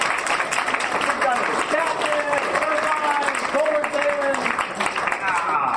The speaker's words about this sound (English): This is my favorite place to do these panel discussions. Give yourself a round of applause for being my favorite place to do it.